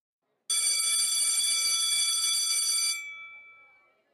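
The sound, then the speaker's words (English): A loud school bell at Sydney Girls High School, Surry Hills, in November 1948 rings continuously for about two and a half seconds with a bright, clattering metallic tone, then stops and its ringing fades out over the next second, as students rush out of room A6 for lunch. “A school bell rings and a wave of students rush out from room A6 for lunch.”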